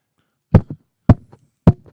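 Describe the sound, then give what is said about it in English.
Three dull, heavy knocks on a door, made with a head, evenly spaced about half a second apart, each followed by a softer rebound thump. Fairly loud, with no voices. “Knock with your head. All right, position me.”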